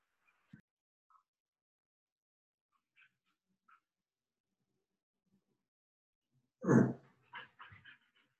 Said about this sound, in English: Can you hear my dog?